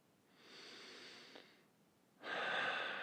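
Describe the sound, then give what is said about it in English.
Slow, deliberate mindful breathing: a long, soft inhale, a brief pause, then a louder, airy exhale. No talking. “Now, as we come back, just want you to take a moment just before we begin the coming back process and breathe.”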